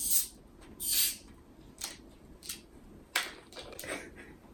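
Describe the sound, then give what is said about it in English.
Orange-scented carbonated soda fizzes and foams in bursts of bright hissing, with a few sharp crackling pops in between. Moderately loud, with no voices. “Now it's going to foam up”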